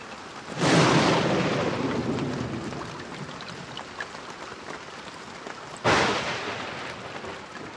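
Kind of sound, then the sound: nature, rain and thunderstorm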